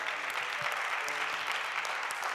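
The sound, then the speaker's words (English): An audience breaks into sustained applause, giving God a hand clap of praise after a prayer, a dense wash of many hands clapping at steady volume, with faint murmuring voices underneath. “Come on and give God a hand clap of praise.”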